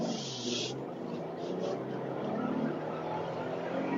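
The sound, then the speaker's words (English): A smooth-sounding truck engine drones steadily from inside the cab while the vehicle accelerates to merge, with a constant wash of road and wind noise and a low engine hum underneath, and no one speaking. “And it's a really good sounding engine, too.”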